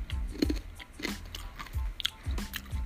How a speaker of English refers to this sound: chewing on a crispy pancake right now.